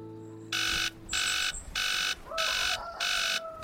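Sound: alarm clock ringing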